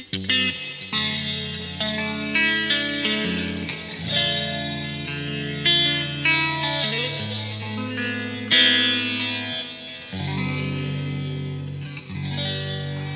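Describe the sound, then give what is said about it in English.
Electric guitar played through a phaser with reverb and heavy delay, chords and notes repeating and smearing into a sweeping, ambient wash. Sustained and fairly loud throughout, with no talking. “Bit more of that delay there.”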